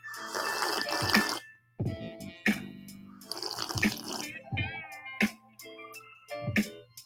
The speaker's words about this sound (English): I don't really slurp like that. I just slurp like that on the show. You guys are probably like, what the fuck? What is he doing? I just think it's funny when I do it on the mic.